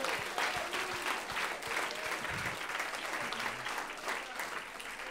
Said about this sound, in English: Get on your feet and clap your hands to the Lord. Come on, give him a praise. Hallelujah.